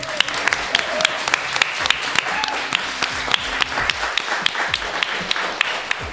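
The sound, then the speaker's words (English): An audience at the Roebuck Pub in South London applauds steadily, with dense overlapping claps and a few sharper individual hand claps popping out above the wash for about six seconds. “Can we have a round of applause, please, for everyone who's joining us tonight?”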